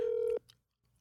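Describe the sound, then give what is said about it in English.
A phone call being dialed: a steady, loud electronic telephone tone holds for about a third of a second, then cuts off abruptly, leaving only faint low rustling. No one speaks. “You want me to call him right now?”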